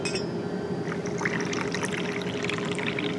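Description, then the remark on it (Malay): Hot tea pours steadily into a cup, a continuous splashing trickle that lasts for several seconds over a low, constant background hum. “Di dalam awak pesawat, Anda menikmati secangkir teh hangat yang disediakan awak kabin.”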